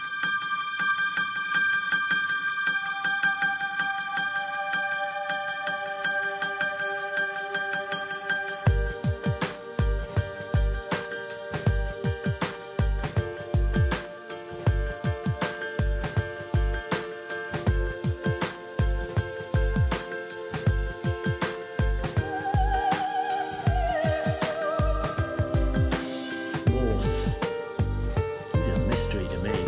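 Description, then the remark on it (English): A down-tempo rave remix of the Inspector Morse TV theme, released as a single: sustained synth melody notes open alone, then a steady, punchy electronic beat kicks in after about nine seconds and drives on under the tune. “Prizes for recognising what that's a down-tempo rave version of.”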